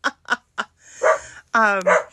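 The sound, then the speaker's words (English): A dog barks three times in quick succession, fairly loud, then lets out a longer, drawn-out whining bark with a rising pitch. “Are we the only ones being controlled by the dog?”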